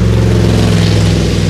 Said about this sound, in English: Wow, listen to that car, guys.